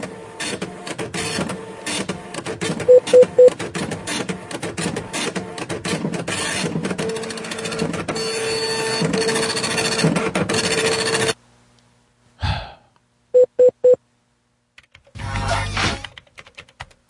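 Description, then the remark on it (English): A printer at a Target store churns out a document during a phone call, with a steady, rattling mechanical whir for about eleven seconds, broken by a couple of short electronic beeps, then stops before a brief final feed burst. “Printing it out. I'm printing it out right now.”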